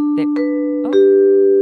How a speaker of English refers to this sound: Is that your doorbell? Shut up. It's the only doorbell sound effect I could find in my computer. It sounds like the NBC, doesn't it? It is the NBC.